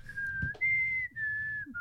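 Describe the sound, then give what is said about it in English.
A person whistles a short tune, holding a few steady notes that step up and down with brief breaks between them, over a low background rumble. “Try whistling it? In this humidity.”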